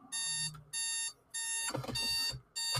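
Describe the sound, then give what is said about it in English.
An alarm clock rings in repeated loud electronic bursts, four or so evenly spaced blasts of a harsh, buzzy tone with brief gaps between them, with some faint knocking underneath. “Apparently my alarm clock was into it.”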